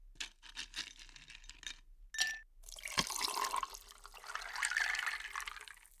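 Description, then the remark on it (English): A few quick glassy clinks and a bright ring, then a drink is poured into a glass in a steady, splashing stream lasting several seconds. No one speaks. “With that, pour a glass of your favorite Guatemalan rum or tea, and let's dive in.”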